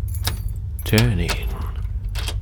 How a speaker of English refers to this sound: A relief that soon melted upon the sound of a key being produced and entering the lock.